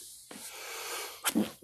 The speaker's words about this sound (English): Bless you. I'm trying not to do the duck sneeze on the podcast.